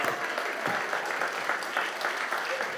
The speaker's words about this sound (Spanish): Mire, me voy a aplaudir yo solo por esa palabra.